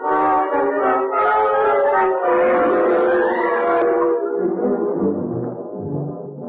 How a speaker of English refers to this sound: that siren means they're searching for me. For heaven's sake, come on.